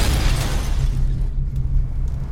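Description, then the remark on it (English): A loud plane engine crash explosion bursts out with a broad roar at a crash scene on a beach, its hiss fading over a couple of seconds while a heavy low rumble keeps going underneath. No one speaks. “I'm here at the scene of the crash.”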